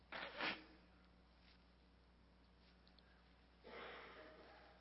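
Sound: nose blowing and sniffing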